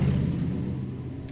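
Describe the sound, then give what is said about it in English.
A passing motorcycle's engine rumbles steadily, a deep, loud drone with a buzzing harmonic hum that eases slightly over its short span, with no voices. “So I didn't want to talk over the motorcycle.”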